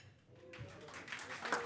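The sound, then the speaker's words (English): A short burst of audience applause during a county executive's speech in Cuyahoga County rises after a brief quiet moment, a soft steady patter of many hands clapping, with a faint voice breaking through near the end. “And folks, thanks if you could hold your applause until the end.”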